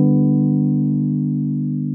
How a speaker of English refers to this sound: I'm going to play them up here so you can get a gist of what they really sound like. And I wrote out the ones I want to play ahead of time. So here is the most common and actually the most fundamental progression there is. Going from 1 to 5.